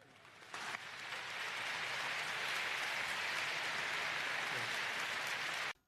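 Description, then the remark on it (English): A large convention audience at a Southern Baptist convention applauds a speaker's remarks steadily for about five seconds, a dense, loud wash of clapping that swells in quickly and cuts off abruptly at the end. “had I been there at that convention, I would have also applauded Al Mohler's remarks”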